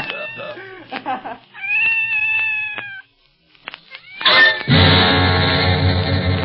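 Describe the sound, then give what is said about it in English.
A scared cat meows several times, fairly loud, including one long drawn-out cry, then a pause before a loud, dense wash of sound takes over. “you'll be sorry if that cat turns out to be working for the octopus”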